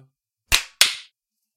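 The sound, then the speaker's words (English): Two sharp, bright hand claps about a third of a second apart, each with a crisp attack and a short ringing decay, with no talking around them, clapped on a count of three. “It's gonna be 1, 2, clap on 3.”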